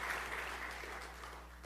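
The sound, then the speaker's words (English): A crowd claps steadily, a dense patter of many hands holding an even loudness for under two seconds with no voices on top. “Well, y'all clap, I'm going to drink.”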